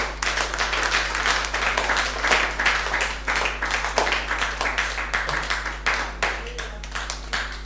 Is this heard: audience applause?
yes